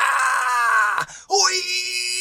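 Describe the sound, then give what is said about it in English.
A voice imitates martial arts fight screaming: a loud, strained yell held for about a second, a brief break, then a second rising cry, alone. “Kumite, lots of screaming.”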